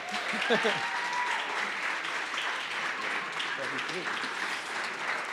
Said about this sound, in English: would you stand and give a round of applause